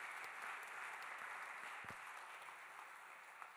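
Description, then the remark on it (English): A crowd claps steadily, a dense wash of many hands that keeps a constant, moderately loud level throughout, with no voices standing out, as a worship audience applauds the Lord one morning after a prayer. “Hey, if the Lord spoke to you this morning, let's just give him an applause this morning.”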